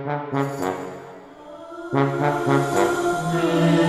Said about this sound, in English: And when you hear the low brass articulate like this, you know something is coming.